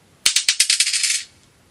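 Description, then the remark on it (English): Dice are thrown onto a hard surface as the first of five dice is thrown in a prize draw: several sharp clacks, then a quick clattering roll for about a second before they settle. Fairly loud, with no voices. “Throw the dice number 1.”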